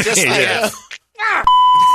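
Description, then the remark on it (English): A man talks, pauses, starts again, and is abruptly cut off by a loud, steady, high-pitched censor bleep over a swear word that holds for about half a second until the end. “That was a big beep.”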